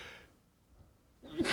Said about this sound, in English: Now you sneeze your life away. You sound like an old man.